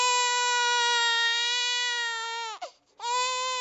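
A baby cries in a loud, sustained, high-pitched wail that holds steady, cuts off briefly for a gasping breath, then starts up again. No one speaks.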